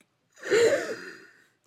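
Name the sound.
gasping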